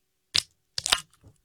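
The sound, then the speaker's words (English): A Bang energy drink can (black cherry vanilla) is cracked open: a sharp snap of the tab, then a brighter burst of fizzing hiss and a few faint trailing clicks. No voices accompany it. “For anyone who appreciates how sound effects got made, I'm opening a Bang energy drink, black cherry vanilla.”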